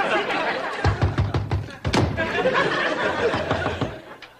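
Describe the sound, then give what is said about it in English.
A door slams shut with a loud bang in the face of a woman going door-to-door selling makeup, preceded by several quicker knocks and thumps, while voices chatter and laugh in the background. “Edie doing door-to-door trying to sell makeup and getting doors slammed in her face”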